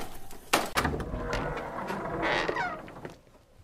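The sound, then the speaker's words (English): A door opens: a couple of sharp clunks from the latch, then a sustained scraping, creaking sweep as it swings, fading to quiet. No one speaks. “The door opens right as Stone returns the knife to the trash and sits back down.”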